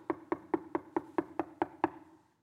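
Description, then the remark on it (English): A quick, steady run of about nine knocks on a wooden door by a baker, evenly spaced, each a hollow thud with a short ring before the next, with no voices. “By the way, he had hardly got done with the prayer and all of a sudden there was a knock.”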